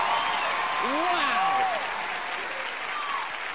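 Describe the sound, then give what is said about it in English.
An audience at a Comedy Central stand-up show with Zach Galifianakis in New York City applauds steadily, a dense wash of many hands clapping at an even loudness throughout, with a few brief whoops or cheers rising above it. “Seriously, clapping.”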